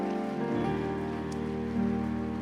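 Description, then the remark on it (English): A crowd claps for Jesus in a dense, continuous patter while sustained keyboard chords hold underneath, shifting pitch a couple of times; no one speaks. “You are clapping for Jesus.”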